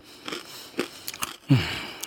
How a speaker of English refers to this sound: Man, the man told me that I sound like a billy goat. Smacking and chewing on gum.